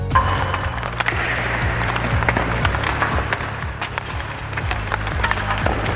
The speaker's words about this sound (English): The Canucks looked very loose for tonight's opener in Edmonton, so much so that I think this is Antoine Roussel did a little stick knock in Elias Pettersson. Watch.